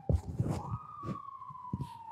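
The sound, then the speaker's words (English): Emergency vehicle sirens wail steadily outside, a long sustained tone sliding slightly, with muffled voices and bumps in the foreground. “Look, there's crazy sirens outside and … on the phone with a customer.”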